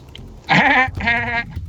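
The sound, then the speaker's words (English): As a contest tiebreaker, a person imitates the distinctive laugh of the Monkey, a minor character in a movie, with two loud, strained, bleat-like bursts, nasal and buzzy in pitch, the second held slightly longer than the first, with no words spoken. “Please provide your best impersonation of the Monkey's laugh.”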